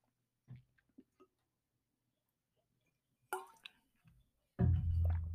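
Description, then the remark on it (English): Quiet mouth sounds of someone taking a sip of water: a few small wet clicks and slurps, a brief swallow, then a louder gulp or exhale near the end. “But let me take a sip of water real quick.”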